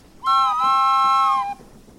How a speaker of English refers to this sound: A train whistle has a high pitch.